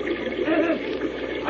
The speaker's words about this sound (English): The rush of water against the gate is too strong. I can't turn it.